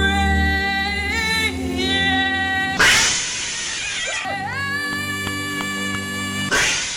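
A cat yowls loudly in long, drawn-out wails that rise and bend in pitch, broken by a harsh, noisy outburst partway through before the howling resumes.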